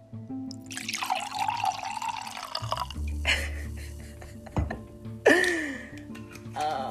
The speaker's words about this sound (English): Let me pour some wine, some little ASMR.